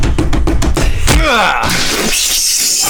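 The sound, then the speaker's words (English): A run of quick thumping steps leads into a loud headbutt smash, followed by ringing, shattering debris that rattles and hisses for a couple of seconds before settling into a noisy tail. “I can headbutt really hard.”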